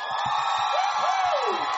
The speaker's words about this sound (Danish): Jeg synes lige, I skal give jer selv en ordentlig hånd og et ordentligt jubel.